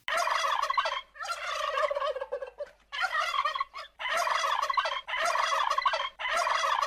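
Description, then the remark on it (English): Chunky turkeys in a barnyard gobble in repeated loud, warbling bursts, each call a rapid rattling trill lasting about a second, separated by short pauses, with no voices present. “So out through the barnyard they ran and they flew, and they gobbled and giggled as friends sometimes do.”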